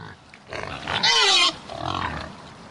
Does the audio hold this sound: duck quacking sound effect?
no